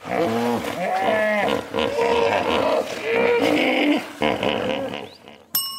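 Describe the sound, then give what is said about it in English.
A hippopotamus roars in a series of deep, loud, grunting bellows with harsh wheezing overtones, pulsing for several seconds before a short pause and a final burst. “Hippopotamus. Yeah, that's a hippopotamus.”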